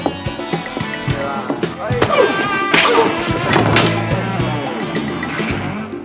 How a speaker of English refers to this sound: Yeah, so after he like murder kicks and punches that guy and then pushes another guy, he then storms into a room.